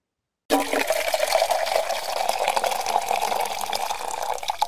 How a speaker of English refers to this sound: I hope you guys liked our little coffee pour.